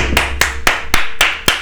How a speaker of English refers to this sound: I'll give y'all applause, man.